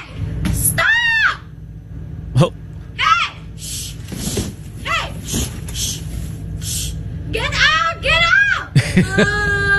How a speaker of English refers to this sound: This came from a convenience store in Lake Tahoe, where the gal working the convenience store got her phone out to film her customer, who was in the store, a brown bear. Oh. And we will discuss whether these are screams of fear, anger, what they are.